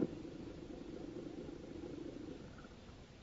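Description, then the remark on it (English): A car engine rumbles low and steady, then eases off slightly as the car comes to a stop in front of Dr. Oden's home. No one speaks. “It was almost half an hour later when Mike Axford stopped his car in front of Dr. Oden's home.”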